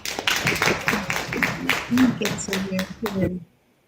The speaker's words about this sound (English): Come on, y'all, let's give him a hand clap.